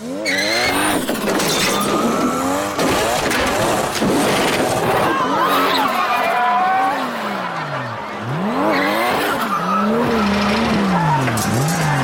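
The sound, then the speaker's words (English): A racing car's engine roars and whines continuously while tires squeal and skid in long, wavering screeches as a driver in his first race wrecks the car, loud throughout, with no clear impact of a crash. “No, I love it that in his first race, this fool humiliated himself by wrecking the shit out of that car.”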